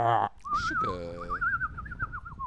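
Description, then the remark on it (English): A person imitates a bird with a warbling, wavering whistle that trills on for about two seconds. It follows a brief burst of voice, and faint talking sits underneath. “I'm going to dress up in multicolors, cover myself in sour sugar, and eat a bunch of sour worms and make those bird noises that you're doing.”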